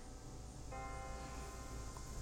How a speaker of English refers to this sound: we can hear the bells. I want to time it. I'm going to have to do it at noon. Come out here with a guitar amp, because they tell you what time it is with the thing. Listen to the bells.